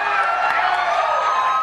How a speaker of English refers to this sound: The raucous applause from the same people who are applauding all night. And again, it was very funny to watch disingenuous people in the media saying, look at that Fox News audience cheering Bernie.